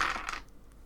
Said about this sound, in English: I'm going to roll 2 more dice.